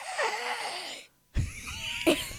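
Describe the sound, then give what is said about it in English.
A child, asked to yawn, gives a long, breathy, drawn-out yawn, pauses for a moment, then lets out a second shorter yawning exhale, fairly quiet. “Okay, one more yawn.”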